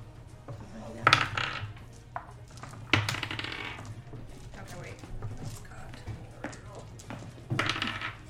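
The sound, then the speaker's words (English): A few sharp clattering bursts of a D20 die tumbling across a hard tabletop for a wisdom saving throw against DC 12, fairly loud, with people talking in between. “A different dice, or we're using a 20? 20. A D20.”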